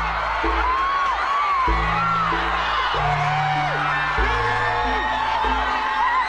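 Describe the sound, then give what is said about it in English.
Hundreds of fans outside a courthouse cheer, whoop and applaud continuously and loudly, with voices shouting over a dense, steady roar, while low sustained tones shift underneath the noise. “Outside were hundreds of fans who, when they caught sight of him, roared with cheers and applause.”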